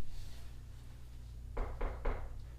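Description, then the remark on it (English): Three firm knocks on a wooden door, evenly spaced, following a stretch of quiet low hum. “Also, someone's knocking at the door.”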